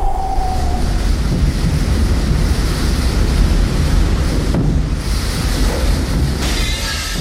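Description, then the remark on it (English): A loud, continuous rush of blowing wind as the wolf huffs and puffs to blow down the second little pig's house of twigs and branches, roaring steadily for about seven seconds with slight surges and a hissy edge, no voices. “And he huffed, and he puffed.”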